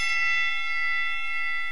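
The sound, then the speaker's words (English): A bright, metallic bell rings out loud, its shimmering tone held steady with little decay, heard on its own with no voices. “Ring the bell.”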